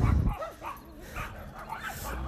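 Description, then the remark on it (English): Three small Scottish Terriers at a house bark and yip in quick, high-pitched bursts, overlapping with some whiny yelps, steady for a couple of seconds. “There's like three little Scottish Terriers. They're adorable. But by God, are they loud.”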